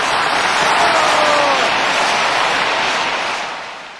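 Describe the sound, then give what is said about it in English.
Loud, dense applause from a large crowd, sustained clapping that tapers slightly toward the end, with no voices standing out; a film scene in which the KGB and Gorbachev, played by Michael Pataki, join in the clapping. “And right, we get like, we even get the KGB on side. We get Gorbachev's clapping.”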